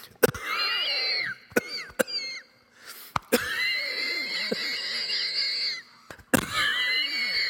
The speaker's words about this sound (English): crazy cough. I don't know what came over me.